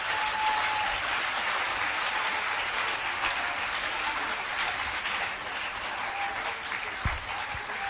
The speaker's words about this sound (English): Rainbow Radio, let's wrap up. Our time is up. You can clap your hands, guys.